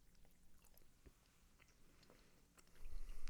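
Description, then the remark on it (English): Crunchy chewing of crisps during a flavour-guessing taste test, with irregular bursts of crackly bites and a low rumble growing louder toward the end. No one speaks. “Oh, you're going to be hearing is just chewing.”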